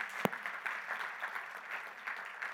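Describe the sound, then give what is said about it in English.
A discussion group gives itself a round of applause, steady rapid clapping sustained throughout, with one sharp louder clap standing out near the start. “You can go ahead and give yourself a round of applause.”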